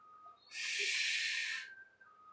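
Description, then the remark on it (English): Howling wind: a thin, steady whistling tone runs throughout, while a loud, hissing gust rushes in for about a second in the middle before dropping away. No voices. “Boy, that howling wind.”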